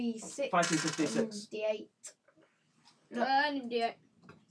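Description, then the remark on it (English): Dice clatter and tumble across a hard tabletop in a brief run of small clicks, set between stretches of people talking loudly. “Roll these dice, though,”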